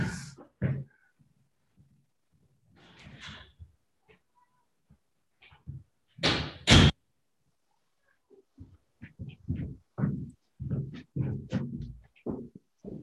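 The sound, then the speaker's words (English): An office door is opened to let in a cat that was scratching at it: two loud sharp knocks and creaks in quick succession, with faint shuffling before and a run of soft, scattered voice-like sounds afterward. “The cat is trying to get in the office. She's like scratching at the door.”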